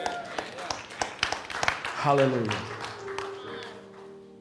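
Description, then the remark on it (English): Scattered, uneven handclaps from about six people at a morning church service, sharp and fairly loud, thinning out as a voice calls out over a steady sustained tone. “All right, six of you clap your hands, but that's all I need is six of you to agree with me.”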